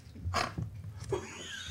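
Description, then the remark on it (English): A rough, rasping snore with a noisy, breathy rumble and low grunting undertones, followed by a second shorter snort, heard on its own without talk. “Who's snoring?”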